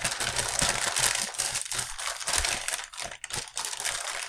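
Loud crinkling and crumpling of paper notes by the microphone, a continuous dense rustle with irregular crackling bursts, no voices.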